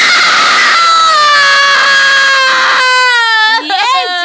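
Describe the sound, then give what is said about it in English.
A person lets out a loud, high-pitched scream held for several seconds, then breaks into shorter wavering shrieks at the end. “I'm scream again. Off, scream!”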